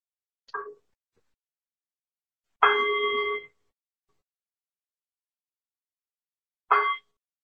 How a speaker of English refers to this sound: And so we'll sit in this way. I might do a few reminders. We'll sit in this way until I ring the bell.